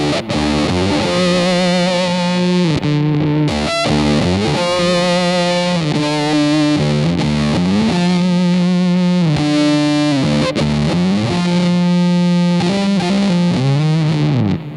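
An electric guitar plays a thick, distorted riff with an octave-down effect adding a deep, heavy low end, steady and loud throughout with chugging rhythmic chords and no voices.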